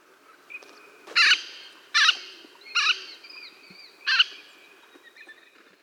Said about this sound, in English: They also have an alarm call that you can often hear if the bird is flushed.